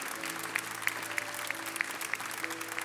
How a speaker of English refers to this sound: Can we just clap our hands one more time and give God praise today?